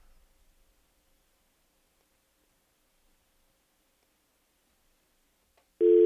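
Near-silence for several seconds, then a loud telephone busy-signal tone cuts in abruptly at the very end, steady, with no voices. It is a failed listener call-in to the phone lines of the Early Break show.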